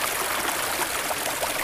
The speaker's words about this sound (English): Yeah. Like, that's a creek. It's a very active creek. Very active creek, yeah.